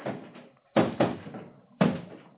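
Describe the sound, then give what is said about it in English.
A door being opened by a page for Father Raymond on arriving home, heard as a few solid wooden clunks and thumps in close succession, moderately loud, with no voices. “Page, open the door for Father Raymond.”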